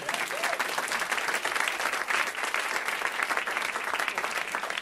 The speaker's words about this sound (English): Clap it up for this gentleman.